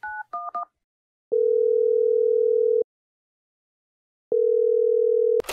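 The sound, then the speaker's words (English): A man dials 911 at 8:19 a.m.: three quick keypad beeps, followed by two long, steady ringing tones on the line with a pause between them, clear and with no voices. “That was when he dialed 911 at 8:19 a.m.”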